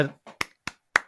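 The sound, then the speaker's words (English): A single person claps three times, slowly and evenly, each clap a sharp, crisp smack, right after a brief snatch of voice at the start. “I have to applaud that.”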